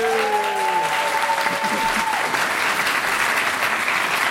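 Steady, dense applause from an audience fills the whole stretch at even loudness, a broad wash of clapping with a few faint tonal hums fading out early on.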